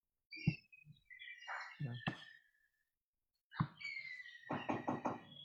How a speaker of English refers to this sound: I've just got to go. Somebody keeps knocking.